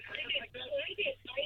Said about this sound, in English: It's a great radio program you're listening to in the background there.